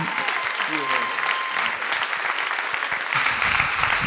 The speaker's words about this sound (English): You may be seated. Thanks for standing, clapping.